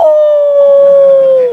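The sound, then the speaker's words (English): A long, steady wolf howl holds one clear pitch, then dips slightly as it trails off. It is loud, with nothing else audible around it. “It was about 7 o'clock at night. The wind was going through the trees. And it was dusk. I could imagine the wolves.”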